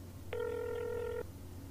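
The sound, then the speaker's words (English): A single ring tone sounds over a telephone line as a call is placed to a landlord: one steady electronic buzz lasting about a second, clear and fairly loud above a low background hum, with no one talking. “It's ringing.”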